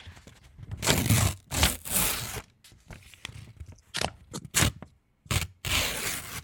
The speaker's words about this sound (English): Wow. So you actually tore something out. I'm tearing paper. You're tearing like a check register. Yeah, well, it's blank.